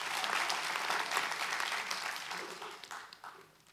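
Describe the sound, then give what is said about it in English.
A church audience claps hands for the Lord in a dense, steady burst of applause that thins out toward the end, with many overlapping claps blending into a broad crackling wash. “Come on, give the Lord a big hand clap if you hear what I'm saying to you.”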